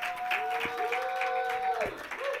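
An audience claps steadily in a dense, continuous patter for a couple of seconds, with a sustained high tone and some voices mixed in over the applause.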